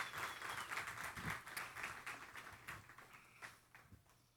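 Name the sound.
audience applauding the band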